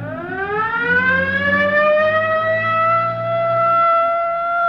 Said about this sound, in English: It's heading down toward Rosecrans. Better hit the siren.